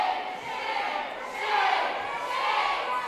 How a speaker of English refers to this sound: But ultimately, what we saw when the bill went up for a vote in the Senate and then the House yesterday is that it cleared the bar. And this is a crowd in the gallery erupted in a chorus of shame.